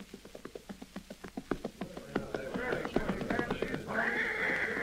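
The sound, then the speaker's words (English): Rapid hoofbeats of a fast western pony ridden along the Missouri River pound steadily as the rider nears a relay station to change horses, giving way to a loud, shrill horse whinny that rises near the end and carries on over a rumble of movement. “Finally, looming up ahead is the first relay station where he is to change horses.”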